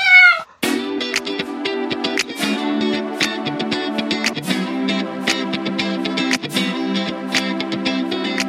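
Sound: cat meowing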